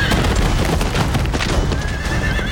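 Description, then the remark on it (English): Hooves clatter in a rapid, busy rhythm on a road while a horse lets out a high, thin whinny near the end, all set against a loud, dense rumble of movement as three riders tumble to the ground and the horses are gone. “In one chaotic moment, the trio tumbled to the ground, and the horses were gone.”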